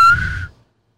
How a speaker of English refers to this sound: Sharp whistle today. You had more? Sharp whistle. No, I'm talking about the literal whistle.